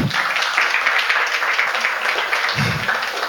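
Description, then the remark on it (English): A crowd applauds steadily for several seconds, a dense wash of many hands clapping at once, fairly loud throughout with no voices standing out. “Please clap for that. Clap to that.”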